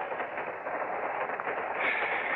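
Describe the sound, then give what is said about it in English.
A steady, dense rumble of a train rolling along its rails, a continuous wash of noise with no voices and no distinct clacks standing out. “A crummy train, no privacy.”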